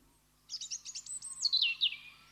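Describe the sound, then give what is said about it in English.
A rapid series of high, thin phalarope calls, a quick run of sharp chirps sliding into slightly longer twittering notes, clear over a faint low hum, with no voices. “And thus we say, Happy Father's Day today to the phalaropes.”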